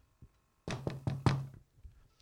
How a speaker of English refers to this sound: I hope I picked up that I knocked four times.